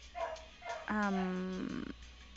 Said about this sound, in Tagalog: Sorry, nag-aaway na yung aso sa labas.